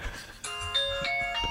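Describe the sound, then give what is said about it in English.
A phone alarm, set as a timer for pasta cooking outside, rings with a bright electronic melody, clear chiming notes stepping between pitches in a steady looping tune that starts abruptly after a brief quiet moment. “It's your phone, …. Oh, is that my phone? Yeah. …. Yeah, no, I set an alarm for my my pasta”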